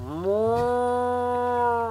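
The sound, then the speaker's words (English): A toy cow gives one sustained moo, a low buzzy tone that slides up briefly at the start and then holds steady for almost two seconds, with no talking over it. “The cow says...”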